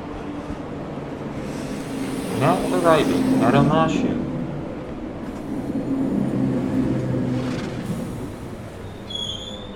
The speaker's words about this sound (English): As the doors open to a bustling cityscape, we find ourselves at the wave of traffic exiting the train. The announcer calling for this train's next stop, just audible enough to be heard over the humming chorus of voices and activity.